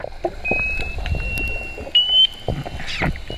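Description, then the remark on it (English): A weird, steady high-pitched beeping tone from the ocean floor off the coast of northern Canada drones on in a few connected stretches, stepping slightly higher, over a murky, low rumbling underwater background with scattered knocks. No one speaks. “There's also a weird beeping sound coming from the ocean floor off the coast of northern Canada.”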